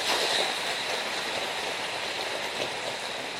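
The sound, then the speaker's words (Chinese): Steady applause of thanks to God from a church gathering with priests, a dense crackle of many hands clapping at an even, fairly loud level throughout, with no voices standing out above it. “这么多神父来为我们，这么多的寿星们来祝福，这么多的天主的祝福，这么多我们为这么多丰沛有效的恩宠感谢天主，掌声感谢。”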